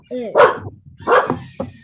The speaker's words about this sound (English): Oh, and that was Tug. Oh my gosh, he sounds like such a big scary dog. Yeah, he's a loud yapper barker.